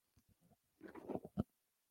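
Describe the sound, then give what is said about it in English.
A few soft lip smacks, then a sip and a quick wet gulp as someone drinks a beer, with a short quiet pause after. No talking. “I'm just going to have a little sip of a beer before I get really on my soapbox here.”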